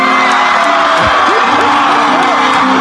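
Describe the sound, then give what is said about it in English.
A recording of a crowd of fans cheering and whooping loudly, with dense overlapping voices and rising, swooping shouts breaking through a steady roar of excitement. “Listen to that fan reaction.”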